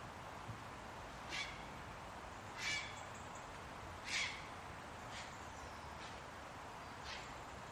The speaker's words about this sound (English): In the evening, you may hear the heron's call, as if announcing its flight home along the river.